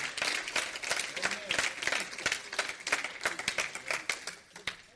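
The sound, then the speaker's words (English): An audience claps steadily for several seconds, a dense patter of many hands at an even, moderate loudness, with faint voices mixed in underneath. “Y'all missed a good time to clap.”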